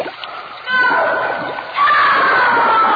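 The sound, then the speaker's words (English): Heavy, continuous splashing and churning of water, loud, growing more violent in two surges, as a man is held under the water by his hair, with muffled voices shouting in the background. “Pull his head on the water. Hold it under.”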